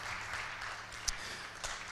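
A crowd claps steadily for a pastor in a dense, continuous wash of applause, with a couple of sharper individual claps standing out above the sustained patter.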